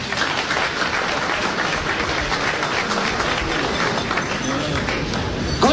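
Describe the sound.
A large crowd at the official launch of a wind farm, held in the rain, applauds steadily and loudly for several seconds, a dense wash of clapping with scattered voices and cheers mixed into the noise.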